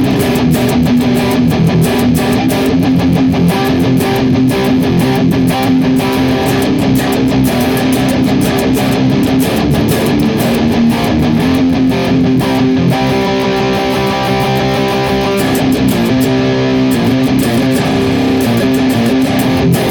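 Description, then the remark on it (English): A heavily distorted electric guitar played through a Boss IR200 and Neural DSP Archetype Abassi using the Iron Drone Green KT88 impulse response: a sustained, chugging riff with a thick, saturated tone, loud and continuous, with a brief higher melodic run near the end. “The Boss IR200 and the Neural DSP Archetype Abassi utilizing the Iron Drone Green KT88 impulse response, it sounds like this.”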